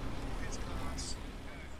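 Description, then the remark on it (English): Team cars roll past at a cycling race finish as riders come in alongside, a steady low engine rumble and road noise holding at an even level for a couple of seconds, with voices murmuring underneath. “Well, I'm now surrounded by a sea of riders coming in to my left and team cars to the right.”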